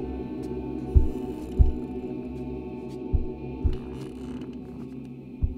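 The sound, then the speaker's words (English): A muffled heartbeat: deep, soft thumps in slow pairs, roughly every two seconds, over a steady low hum with no voices. “But for many minutes, the heart beat on with a muffled sound.”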